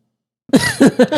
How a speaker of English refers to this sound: did you just cough in my monologue? I was like, sorry, allergies.